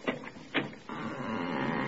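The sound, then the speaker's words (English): A basement apartment door that needs a little oil creaks open with a long, drawn-out groan, preceded by a couple of short clunks from the latch or handle; the grinding creak holds steady for over a second. “It just needs a little oil.”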